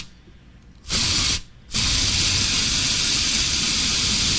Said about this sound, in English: This is spraying aerosol.